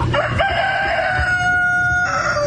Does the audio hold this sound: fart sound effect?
no